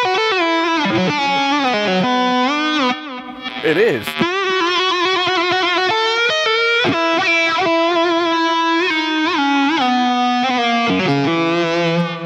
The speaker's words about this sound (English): And someone says, that guitar sounds shit. It sounds like a synthesizer.